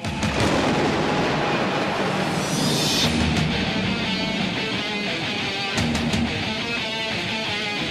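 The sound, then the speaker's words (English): A thunder sound effect: a loud, continuous rumble of thunder rolls for the whole clip, with a bright crackling burst about midway and a few sharp cracks near the end. No one speaks. “Cue the thunder.”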